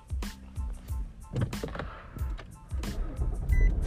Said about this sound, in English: Turn my car on.